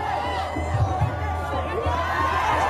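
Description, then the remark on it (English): A dense, steady roar of a large crowd in New York cheering as an American flag is pulled down near a sign reading UN Way, with overlapping shouts and cheers layered over a constant wash of chatter, holding at a fairly loud, even level throughout. “And the crowd is cheering.”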